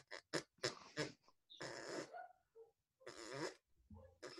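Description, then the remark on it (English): A person imitates a dog's farts with their mouth: several short sputtering bursts, then two longer raspy blasts with a brief pause between, loud. “Also, like, I didn't know that dogs, like, really audibly farted.”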